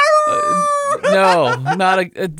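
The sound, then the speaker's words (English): A single human voice lets out a drawn-out, wavering, loud howl, holding one long steady note before sliding and breaking into rising and falling yips, part of a whole community's nightly 8 o'clock howl. “Yeah, every night at 8 o'clock, they howl. The whole community howls.”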